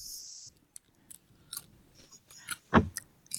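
Chewing snacks with crisp crunches and smacking bites, irregular and loud, one sharp crunch standing out near the end, no talking.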